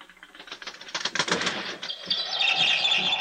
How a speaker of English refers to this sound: There's some bird out there trying to get in. Shoo it away. I can't sleep with that noise.